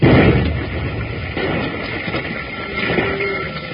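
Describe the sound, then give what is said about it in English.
A lit fused charge thrown from a train explodes: a loud blast bursts out at the start, then a heavy, rumbling roar of noise carries on for several seconds with a second swell near the end, muffled and dull. “All right, the fuse is lit.”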